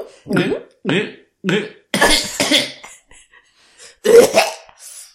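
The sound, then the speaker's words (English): A voice imitates choking and gulping: three short strained bursts, then two longer rough noisy gasps, a pause, and a final loud throaty gurgle, fairly loud with no other sounds. “It was a choking sound.”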